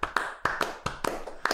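Hands clapping in a quick, slightly uneven burst of about seven or eight sharp claps, fairly close and moderately loud, with no voices.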